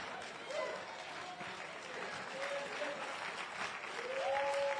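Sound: audience clapping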